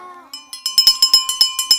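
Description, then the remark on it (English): A small hand bell, rung to calm a group of unruly ladies, rings in a quick series of about ten bright, metallic strikes with a high, sustained ringing tone, fairly loud after a faint voice at the start. “And she rings it when I'm trying to get her unruly ladies to calm down.”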